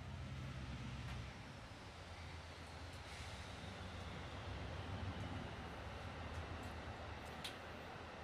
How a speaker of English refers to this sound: Oh, I'm going to let the train pass.